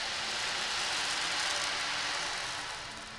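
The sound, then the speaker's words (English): The little beads inside an ocean drum roll around in a steady, hissing wash, like surf or rain, holding even for a few seconds before easing slightly at the end. No voices. “There's these little beads in there. They kind of roll around.”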